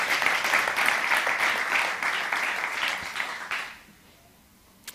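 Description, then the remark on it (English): An audience claps their hands to celebrate Jesus in a dense, steady burst of applause lasting several seconds, then it fades out quickly into near silence. “That means clap your hands.”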